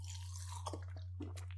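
human body sound, drinking water

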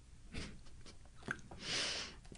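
food or drink, sipping water

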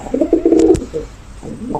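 bird, pigeon cooing

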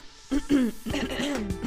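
human body sound, throat clearing

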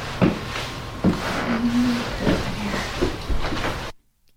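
footsteps

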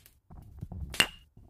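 household object, glasses clinking

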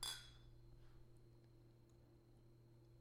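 household object, drink glasses clinking

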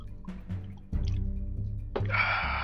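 food or drink, sipping a drink

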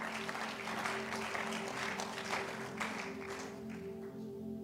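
crowd, audience clapping

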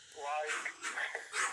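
animal, dogs barking and whimpering

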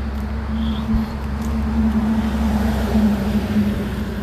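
vehicle, cars passing by outside

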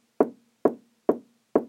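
household object, knocking on a door

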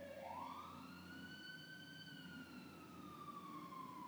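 vehicle, police siren passing outside

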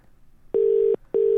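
signal or alarm, telephone ringing tone

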